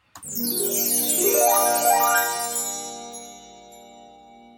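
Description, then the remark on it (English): A bright chiming show jingle with shimmering, rising bell-like tones rings out alone for about four seconds during a live-streamed show, then gently fades away. “You've got itching ears, just waiting for the particular chimes.”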